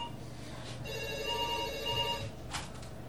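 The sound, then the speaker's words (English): A telephone rings once with a bright, steady electronic trill lasting over a second, heard clearly at moderate volume over a low background hum, with no one speaking. “The phones are ringing.”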